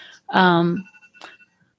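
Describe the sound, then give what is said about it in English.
A timer set for 40 minutes goes off with a loud, buzzy electronic tone lasting about half a second, followed by a fainter ringing tone and a quick second blip that fade out. “I had my timer go off at 40 minutes just so we would have a feeling.”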